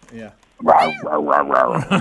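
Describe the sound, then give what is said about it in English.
A person imitates a bulldog growl, a loud, rough vocal rumble that rises and falls in several quick pulses after a brief voiced sound at the start. “Give us a bulldog.”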